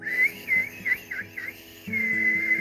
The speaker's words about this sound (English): Blackbird whistled the start of the race.